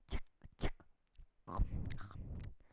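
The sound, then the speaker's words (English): Crisp crunching of a girl at breakfast biting into burnt toast with a thick layer of strawberry jam: two sharp separate crunches, then a longer, denser stretch of grinding crunches, with no talking. “She was very sleepy and nearly fell asleep eating it. And then, crunch.”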